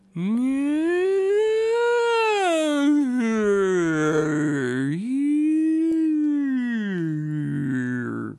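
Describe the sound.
A human voice imitates whale song: one long, unbroken moaning call whose pitch swoops slowly up and down for about eight seconds, rich in harmonics and steady in loudness.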